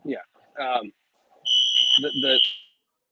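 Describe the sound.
A shrill, steady electronic alarm beep rings out for about a second, fairly loud, while a person keeps talking over it.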